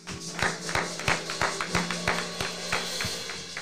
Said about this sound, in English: I'll give it another hand clap of praise for the words we just received.